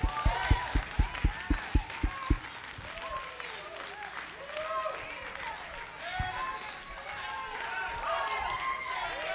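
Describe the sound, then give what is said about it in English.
An audience at the Worship Center on Cardinal Drive claps hands at the preacher's call in a quick, steady rhythm for a couple of seconds, then the clapping fades into a swell of excited shouting and overlapping voices. “Come on, clap your hands, all ye people.”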